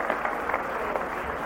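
An audience claps together, a dense and steady patter of many hands that keeps up at an even loudness without any talking over it.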